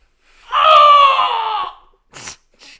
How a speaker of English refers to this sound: going to be really mad that I just screamed like that. I bet.